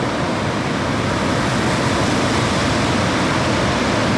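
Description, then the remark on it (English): Loud, steady roar of ocean surf, a dense rushing wash of crashing waves that blends into one continuous wall of noise without distinct breaks, with no voices. “And these ocean waves, you guys, were loud.”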